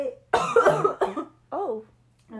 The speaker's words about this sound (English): I was coughing.